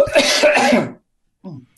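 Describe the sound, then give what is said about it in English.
A harsh, rasping cough bursts out for nearly a second, followed after a short pause by a softer, brief throat-clearing sound. “Pardon me, I've got a cough again.”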